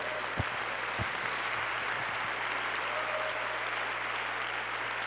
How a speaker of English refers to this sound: you can keep your mind clear, you can keep your heart clean, and you can speak the right things, and you can do the right things, and why don't everybody clap your hands?